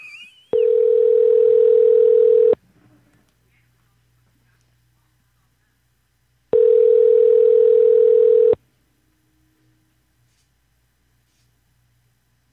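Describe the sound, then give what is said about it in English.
An outgoing call's ringback tone sounds twice, each a steady two-second electronic purr separated by a long silent gap, clear with no one talking, as a call back to a woman goes unanswered. “She doesn't want to fucking answer right now.”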